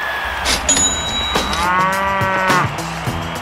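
A cow moo sound effect: a loud, long drawn-out bellow with a rising, harmonic-rich tone, followed by a lower trailing moo, with no talking.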